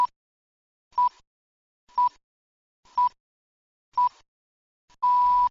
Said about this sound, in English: So there's going to be some beeps, and on the final, longest beep, press play on your DVD or Blu-ray.